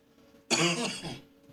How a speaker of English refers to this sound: Yeah, there's one consequence of... being solos, you're going to have to hear me cough,